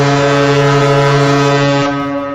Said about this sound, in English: Here's your standard car horn! And here's a Kurt High Performance Car Horn!